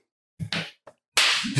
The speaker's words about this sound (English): That's a manly clap.